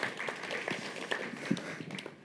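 A short round of hand clapping, with quick, sharp claps overlapping in an uneven patter for about two seconds at a moderate level, then starting to taper off.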